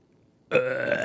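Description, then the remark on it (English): A voice imitates a burp on command: one loud, drawn-out croaking belch that starts abruptly after a brief near-silence and holds steady to the end. “That was fake. It was completely fake. I cannot burp.”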